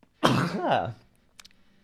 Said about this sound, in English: I'm going to sneeze.